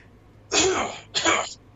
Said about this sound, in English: I've had this, like, I've been holding back a cough literally since we started, and I'm going to let it out now. That way I can explain it.